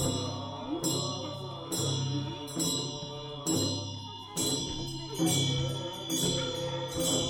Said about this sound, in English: I remember hearing chanting voices coming out of a lodge alongside the trail.